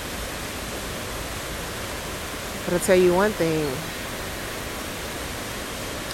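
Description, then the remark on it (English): A steady, hissing rush of running water from a fountain fills the background throughout, with a person briefly speaking over it near the middle. “I'm glad I found this water fountain.”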